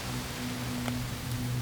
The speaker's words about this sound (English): Raining again.